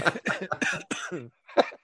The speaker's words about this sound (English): Yeah, I got one cough already.